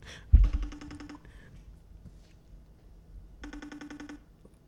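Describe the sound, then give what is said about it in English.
An outgoing phone call's ringback tone purrs twice, each ring lasting under a second with a long pause between, heard plainly with no one talking, after a brief thump at the start. “Nah, I'm gonna call her anyway.”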